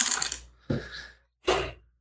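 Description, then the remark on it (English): Dice clatter across a hard tabletop in three quick rattling bursts, each a short spill of bright clicks that trails off, with no one speaking; a player rolling again for the extra dice added to the dice pool. “And then get I roll again for the extra for the. I just add that to the dice pool.”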